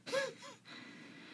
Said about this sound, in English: She's yawning. I pushed it back down. I was hoping you didn't notice. I thought you might think it was like a little burp or something. She yawned.